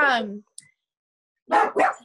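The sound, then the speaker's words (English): A dog barks three times in short, loud bursts: one at the start, then a pause, then two quick barks close together. The barks are clear, with no talking. “To be honest, now, sorry, like we have a dog here.”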